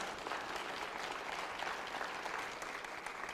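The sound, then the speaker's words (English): An audience claps their hands in dense, continuous applause, a steady wash of overlapping claps with no clear rhythm, sustained at an even level throughout. “Come on, clap your hands.”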